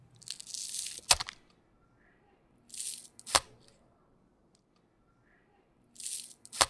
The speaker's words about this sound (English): Well, so what he was doing wrong was that he was chopping. Uh-huh. He was chopping hard down and basically crushing. Yeah, you hear him kind of compress almost. That's right. Let's hear that sound clip of the wrong way.